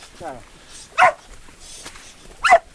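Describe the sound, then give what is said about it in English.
Tara, an unruly collie, gives two loud, sharp barks about a second and a half apart, with a brief high, wavering whine just before the first. “took me with his unruly collie Tara to try and get a glimpse of one possible future for the West.”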